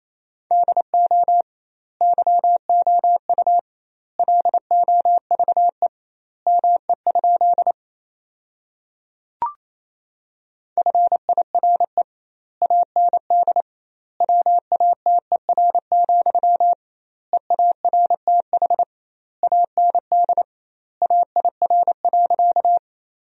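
Fast Morse code at 28 words per minute, sending sentences built from the top 400 words with double word spacing, as a steady mid-pitched beep keyed into rapid dots and dashes, with clear pauses between word groups and a single brief click midway.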